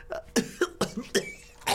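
A rapid fit of coughing, five or six harsh bursts in quick succession, fairly close and moderately loud, with no talking.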